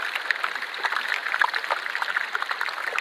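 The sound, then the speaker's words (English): Iceberg ice crackling and popping underwater as it melts and trapped gas bubbles out, a constant fizzing mass of tiny sharp clicks and pops with no pauses, bright and crisp like steady sizzle, with a few louder snaps standing out. “It was quite something here in that popping, crackling. It was constant, constantly cracking and popping.”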